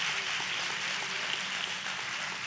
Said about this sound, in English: Come on, if we're going to clap, let's do it well. Come on.